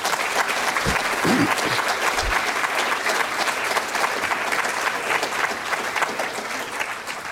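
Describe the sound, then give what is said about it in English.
Sustained applause from a large audience at the close of a CARTA meeting, a dense, steady patter of many hands clapping at an even loudness throughout, with a few faint voices briefly audible beneath it. “Okay, my role in this is to close the meeting and most importantly to elicit some applause or thanks from you for all the people that have actually done all the work.”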